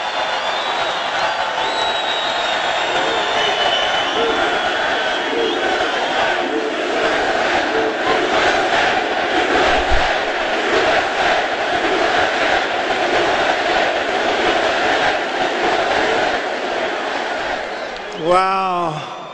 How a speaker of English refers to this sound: I'm sorry, MAGA country, but that wasn't too close. I thought you had it won, and then I heard this cheer. My eardrums will never be the same.